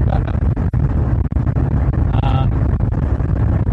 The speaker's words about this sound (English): We're now at 40, almost 50 miles an hour. The background noise is mainly wind rather than engine noises. We've got the windows open, otherwise we'd be frying in here.